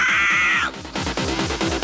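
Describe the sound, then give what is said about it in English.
A human voice lets out a loud, shrill, sustained screech that then breaks into a series of harsh, raspy, rhythmic bursts, like a crow's caw. “Here comes the screech.”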